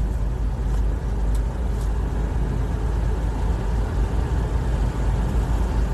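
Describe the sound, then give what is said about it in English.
A car's engine rumbles steadily as the vehicle is driven slowly to reposition it, a continuous low drone with road noise and no talking. “I'm just moving my car right here right now.”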